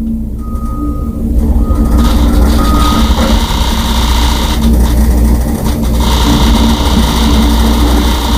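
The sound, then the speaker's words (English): Loud, constant noise from construction in front of a house fills a home office with the windows closed: a heavy mechanical rumble with a rattling, vibrating edge from a sliding closet door shaking in its track. A brief high beep sounds near the start. “Construction going on in front of his house, and we played a clip of how loud it is in his office.”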